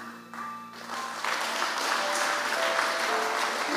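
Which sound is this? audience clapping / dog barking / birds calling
audience clapping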